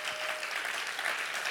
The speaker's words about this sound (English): Come on, let's applaud and thank God if you believe in that today.